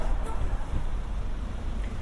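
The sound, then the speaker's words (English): Steady, low wind rumbles and buffets against the microphone at Milton Keynes train station in Buckinghamshire, England, a continuous roar with no clear pauses and no voices, filling the short clip evenly. “It is a bit windy, but I'm going to just try and record an episode while I'm here.”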